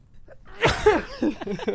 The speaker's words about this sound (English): Sorry. It's okay. Bless you.